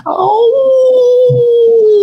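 A single long, sustained wolf howl from the trees, loud, sliding down slightly in pitch and holding steady with a faint breathy edge.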